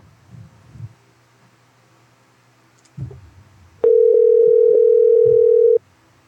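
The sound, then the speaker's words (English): A steady, loud telephone dial tone holds for about two seconds on a single mid-pitched hum while a call is being placed, preceded by a few low thumps and rustles of handling the phone. “I'm going to call your hubby”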